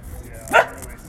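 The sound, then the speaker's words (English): A small dog gives one short, high-pitched bark, clear, rising briefly above a faint steady background hiss. “Okay, little dog syndrome. Little total dog accident.”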